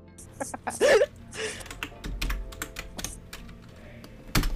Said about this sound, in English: Okay, he's typing, guys. He's typing.